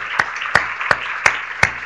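Audience applause: a steady hiss of many hands clapping, with five sharp, evenly spaced louder claps standing out on a regular beat. No one speaks.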